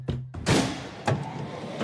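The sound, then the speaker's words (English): Several heavy thuds strike at uneven intervals as police pound on a door that the owner refuses to open, each hit booming briefly against a low background hum. “Stop banging on the door.”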